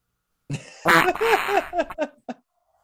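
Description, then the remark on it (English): A voice imitates a fart: a loud, raspy sputter lasting about a second and a half, breaking into a few shorter wet bursts before trailing off, with no talking. “And here's a fart sound.”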